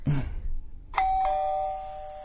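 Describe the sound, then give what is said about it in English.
A doorbell chimes with two quick strikes in succession, then a bright ringing tone holds and slowly fades, with no voices over it. “Are you going to answer the door?”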